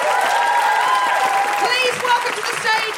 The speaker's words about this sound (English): Can I have, before I bring on our incredible closing act, can I have a huge round of applause